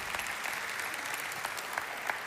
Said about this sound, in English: Let's appreciatively applaud the Lord once again for this melodious choir.